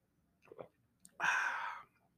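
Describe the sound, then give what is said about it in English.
A quiet sip of coffee: soft mouth noises and a small click, then a single airy slurp lasting about half a second, with no talking. “Excuse me, I need a sip of coffee.”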